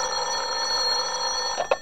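A telephone bell rings loudly at about 11 o'clock at night in one long, continuous trill, followed by a couple of short, sharp bursts near the end. Nobody speaks.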